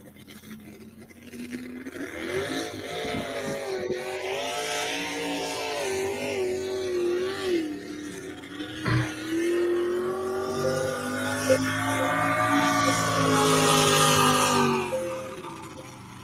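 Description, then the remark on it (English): A 1955 Chevrolet truck engine roars on a racetrack, revving hard with repeated rising and falling pitch sweeps that build to a loud, sustained howl, with smoke billowing out from underneath the engine. No one speaks. “This is Toria McDowell, 1955 Chevrolet truck.”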